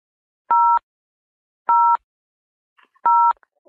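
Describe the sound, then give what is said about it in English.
Three short electronic keypad beeps from a telephone button being pressed during a phone call, evenly spaced about a second apart, each a steady dual-tone chirp lasting a fraction of a second, with faint clicks between them and no talking. “Let me press the button.”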